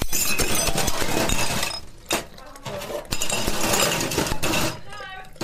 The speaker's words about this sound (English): So much smashing of things. And I didn't know what had happened. Like it sounded like shattering. It sounded like a car had crashed through the front windows. Whoa. Like there was just so much glass shattering going on.